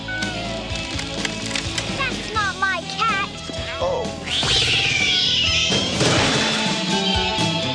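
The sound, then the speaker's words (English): A cat meows several short times, then a loud clattering crash bursts out and rings on for a couple of seconds, with voices murmuring in the background, in a scene from the film Suburban Commando. “My cat. My cat.”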